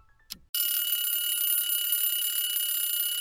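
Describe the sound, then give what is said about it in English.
A loud, continuous electronic alarm abruptly blares after a brief click, sustaining a bright, shrill ringing tone: the quiz timer called Rocky's Clock going off as time runs out on a rapid-fire question round, with no talking. “Rocky's Clock, Rocky's Clock, you didn't beat Rocky's Clock.”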